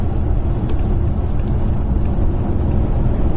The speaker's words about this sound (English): That little four-cylinder engine bashing away quietly. It's probably so lost in the engine bays, surrounded by the equivalent of 10 sleeping bags of sound insulation.